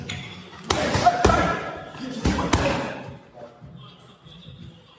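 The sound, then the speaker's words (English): Four sharp, heavy thuds land in quick succession as a fighter repeatedly punches his opponent's body rather than his face, each thud with a brief decay, over a low background murmur. “Andrew's not punching him in the face on purpose. He's hitting his body over and over.”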